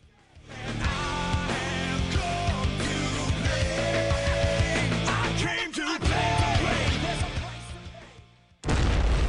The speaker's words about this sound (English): Some fireworks, huh? You feel that?